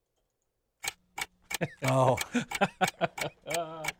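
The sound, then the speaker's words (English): A clock ticks with crisp, evenly spaced clicks, loud, while a voice briefly speaks and vocalizes between and over the ticks. “1, 2, you hear the clock ticking.”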